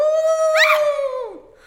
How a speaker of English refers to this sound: It must be those wolves they were talking about.